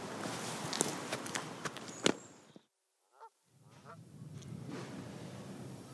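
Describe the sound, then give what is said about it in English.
A few short gull calls ring out between gusts of outdoor ambience at Crow Park beside a lake, with scattered thumps and rustling and a brief lull in the middle. “There's gulls swinging around, there's people coming in and out, loving the setting and looking out onto the lake, and there's people paddling there.”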